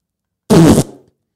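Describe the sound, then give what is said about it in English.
A person blows a loud, wet, spluttering raspberry imitating a broccoli fart, a single burst of about a third of a second with a short fluttering tail. “Because I'll do my broccoli fart”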